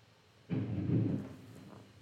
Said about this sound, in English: Thunder. I'm not normally fond of what follows. But, you know, because we're under a thunderstorm warning, apparently.